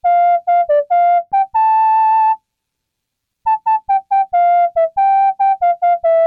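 A synthesized MIDI whistle plays a bright melody of short, stepping notes and one long held tone, pauses briefly, then resumes with a quick run of notes. Clear, with no voices.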